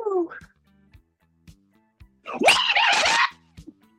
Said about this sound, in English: Wow, that's a loud yell from … there